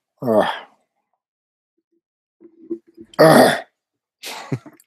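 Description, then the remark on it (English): A voice makes a string of forced, exaggerated fake coughs and throat-clearing noises: a short vocal burst, a pause with faint rasps, then a loud harsh cough and a final gruff clear. “Got to hear that all day at work. The fake cough.”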